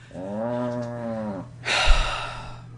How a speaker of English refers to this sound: Is that a cow in the background there, cow? Chickens?